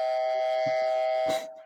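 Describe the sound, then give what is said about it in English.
A quiz buzzer sounds once, a loud, steady electronic tone held for over a second before fading quickly, with a brief thud near the end and no voices. “I mean, red buzzer would be good.”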